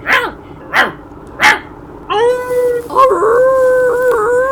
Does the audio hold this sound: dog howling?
yes